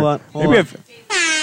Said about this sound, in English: And all of a sudden, he decides we're gonna play air horn songs.